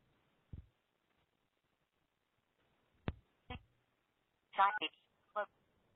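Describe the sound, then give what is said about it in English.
A phone dials into a conference line: a few scattered clicks and taps across a quiet background, then a short cluster of electronic tones near the end. “I'm going to just call in from my phone.”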